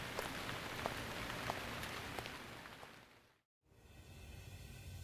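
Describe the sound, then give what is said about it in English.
Steady rain patters on a hard surface outside a diner in an audio fiction production, a dense, hissing wash with scattered sharper drop ticks, cuts to silence briefly, then resumes as a softer, duller downpour. “Roger stood in the rain for a second longer, before turning and heading for his car.”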